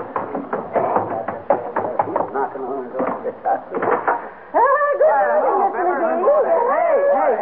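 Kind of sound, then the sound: household object, knocking on a door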